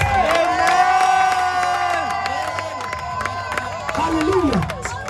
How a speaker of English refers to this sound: If you are here and you are clapping and your voice is the loudest, it is yours.